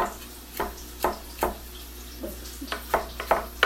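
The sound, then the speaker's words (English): Chopped garlic going into a cooking pan: a run of sharp, irregular clacks and scrapes, growing busier toward the end, over a soft steady sizzle-like hiss, with no talking. “Okay, so I'm chopping up the garlic and we'll just put that in. Maybe we'll put it in now.”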